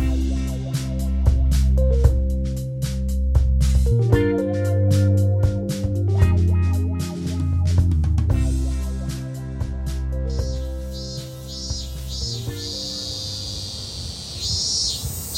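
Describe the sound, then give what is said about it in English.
Mellow instrumental music plays throughout, and in the second half a pulsing, high-pitched buzz of summer cicadas outside a window swells in beneath it, rising and falling in waves. “I hope you're enjoying your summer and the cacophony of cicadas that comes with it.”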